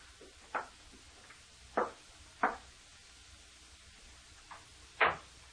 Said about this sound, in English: I reached the outside door. Mechanically, I took the key from my pocket, inserted it in the lock, opened the door.